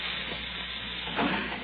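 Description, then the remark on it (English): Gas hisses steadily from a pipe after someone turned it on, a continuous breathy rush with a slight swell partway through, heard alone without any voices. “Listen. You hear that? It's the gas. Someone's turned on the gas.”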